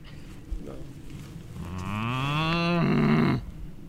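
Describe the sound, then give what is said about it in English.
A single long, loud moo from a German cow rises in pitch and swells over about two seconds, then drops into a lower drawn-out tone before cutting off, against quiet outdoor background noise. “tried to get German cows to talk to us.”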